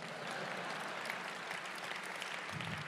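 Steady, dense applause from an audience, a continuous crackle of many hands clapping at an even, fairly loud level for a few seconds, with no one speaking over it.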